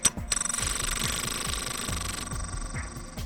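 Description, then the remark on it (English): Rapid, resonant percussive clacks of crystal facets slamming together repeat in a steady rhythm, heavy and booming at the low end, while a high, steady ringing hum sustains above them and the ground rumbles. No one speaks. “And you hear a hum begin to form out of the resonant percussive slams of these crystal facets, and the ground rumbles.”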